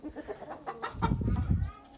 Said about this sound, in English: Oh, there's a chicken fight. Oh my goodness.